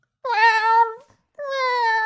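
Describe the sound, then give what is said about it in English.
A person imitates a yowling cat with two loud, drawn-out wailing cries, the first wavering and fading off, the second held steady after a short pause. “I'm just going to be Marty the entire time. So it's just nothing but yowling.”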